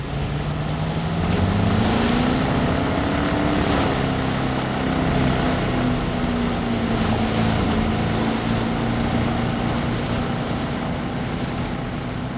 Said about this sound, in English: Captain Kevin hits the gas and the speedboat thrusts forward, smashing through the waves